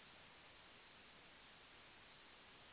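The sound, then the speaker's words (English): Faint, steady hiss of static on one caller's end of a phone line, an even band of noise running unbroken throughout, with a brief soft bump right at the end and no voices. “I don't know if others had the problem, but it was on my end, so maybe it was on my end.”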